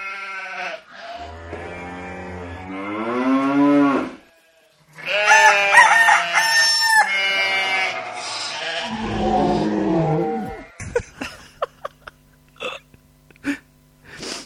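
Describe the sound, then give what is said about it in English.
A quick farmyard sound montage: a low, drawn-out cow moo, then a loud rooster crowing, a bleating call, and a scatter of sharp clicks and short taps to finish, with no talking. “I thought it'd give us an animal themed sting, because of the wee final titbit that you have for us.”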